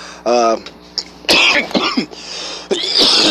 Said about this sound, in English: Yo, oh shit. Damn. 20 seconds in, I'm coughing.